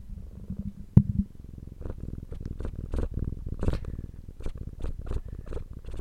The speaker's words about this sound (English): And hope you can hear Toby's purring, everybody.